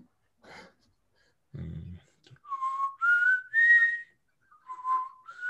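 Someone whistles a short melody of several sustained notes that rise and fall in pitch, moderately loud, with a brief breathy noise and a low thump before the tune begins.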